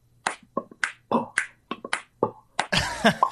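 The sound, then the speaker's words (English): A quick, rhythmic run of crisp finger snaps mixed with clicking and popping mouth sounds, about a dozen sharp hits, ending in a denser, louder burst of noisy sound. No talking. “the organic human nature of your human voice might go well with the organic human nature of my human lips and tongue and finger snaps, like this.”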